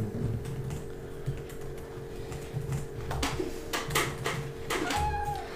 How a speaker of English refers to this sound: I'm going to type that in.